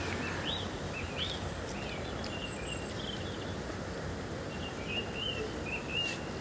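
birds chirping outdoors

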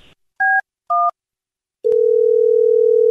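telephone dial tone

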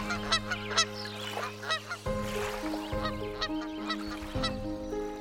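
canada geese honking

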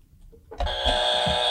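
quiz show buzzer

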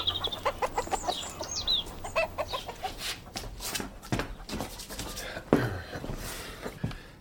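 chickens clucking

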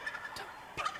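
turkeys gobbling

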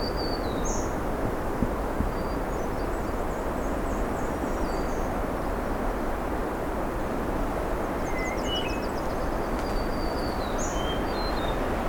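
hermit thrush song

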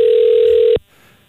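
telephone ringing tone

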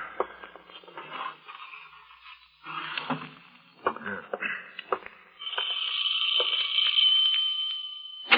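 doorbell ringing

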